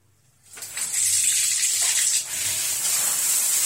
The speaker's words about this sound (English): For the moment, I'm going to be demonstrating taking a cold shower. So I'm going to be suffering here. It's going to be funny for you and tortuous for me. And then I'm going to give you some tips here on how to take a cold shower.